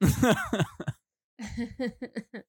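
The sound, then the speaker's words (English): A close, loud hacking cough in two bursts: a long, harsh, rasping run of coughs, a brief pause, then a second string of shorter, choppy hacks. “Just do one long hacking cough, and we'll call it good enough.”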